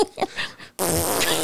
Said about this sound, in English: What is a snow fart?